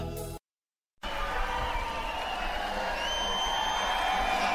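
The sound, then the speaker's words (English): A brief musical note cuts off into a moment of silence, then a large crowd erupts in loud, sustained cheering and applause, with scattered whistles rising over the roar. “Wow, you're probably wondering what the crowd is cheering about.”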